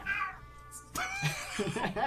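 A cat meows, a drawn-out high cry followed by shorter, wavering meows, with some muffled background noise underneath.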